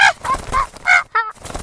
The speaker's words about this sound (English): What is that? Quiet, Caesar. Time rat. Same old parrot, I notice.